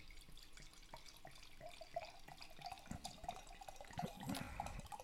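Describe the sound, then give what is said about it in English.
Wine glugs and splashes as it is poured from a bottle, a steady liquid stream with small gurgles, fairly quiet, running for a few seconds with no talking. “Now you're getting the pour.”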